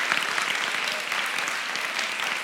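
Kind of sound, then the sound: crowd, audience applauding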